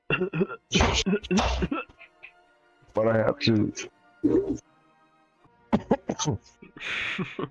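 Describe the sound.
Harsh, close-up coughing bursts hit right against the microphone, a few rough hacks spread across the moment, with a voice speaking briefly between them.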